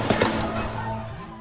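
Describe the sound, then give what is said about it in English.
A quick burst of sharp gunfire pops at the start, at a 4th of July parade in Highland Park, Illinois, then a steady wash of outdoor background noise with a low hum, no voices. “gunfire. Not fireworks, gunfire.”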